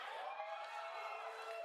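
A crowd at a presentation of the Avengers video game cheers and roars after an announcement of early beta access on PlayStation, a steady, unbroken wash of noise that holds at an even level for the whole short stretch, with no single voice standing out.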